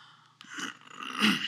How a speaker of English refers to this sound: You clear your throat a lot in the podcast, did you know that? No. I have to cut as many of them out as I can because you do it all the time.